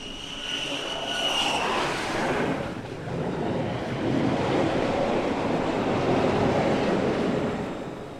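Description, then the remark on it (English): A jet launching from a catapult at the bow of an aircraft carrier in the Atlantic, passing right overhead: a loud roar with a piercing high whine at first, giving way to a sustained, wind-like rushing blast that fills the whole recording. No one speaks. “We were taken to all nooks and crannies of the carrier to record from the front of the boat, the bow safety area, where the jets launch right over your head from the catapults.”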